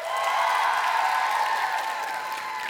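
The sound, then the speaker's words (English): An audience claps steadily to vote between a rattlesnake and a shark, a dense, even wash of many hands that holds at a fairly loud level before easing slightly at the end. “Some of you are clapping for both.”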